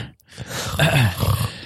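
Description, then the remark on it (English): A single rough, rasping snore lasts just over a second, with a low groaning tone that rises and dips in pitch. It is fairly loud and stands alone, with no talking. “Yeah, you're snoring. Did you hear that?”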